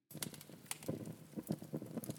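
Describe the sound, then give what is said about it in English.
A fireplace crackles steadily, with irregular sharp pops and snaps over a soft, warm rumble of burning logs; fairly quiet and with no voices. “Little fireplace sound.”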